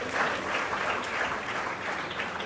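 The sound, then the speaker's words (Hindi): Steady applause from an audience greeting Vikramjit Banerjee, Additional Solicitor General of India, as he is honoured with a stole: a dense wash of many hands clapping at an even, fairly loud level throughout with no voices rising above it. “मित्रों तालियों से जरा अभिवादन करेंगे।”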